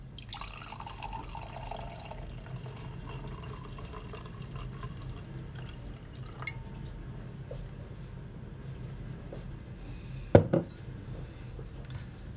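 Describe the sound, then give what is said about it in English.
Wine from a screw-top bottle glugs and trickles steadily into a second glass, a soft continuous liquid sound, ending with a sharp, bright clink of glass near the end. No one speaks. “So I guess I shall pour it out.”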